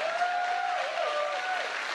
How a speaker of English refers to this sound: You know, it's weird. I know the applause is really for the better 70s, my wife,